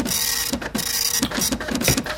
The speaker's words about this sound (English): I got the report here off the MTS. Mm-hmm. Just came off the printer.